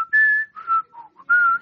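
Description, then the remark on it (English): Someone whistles the Jeopardy theme tune: a clear, steady melody of about five held and short notes that dip lower in the middle, then climb back to a long final note, with no talking. “Now, we don't know how far the field was away, but you can hear the Jeopardy song.”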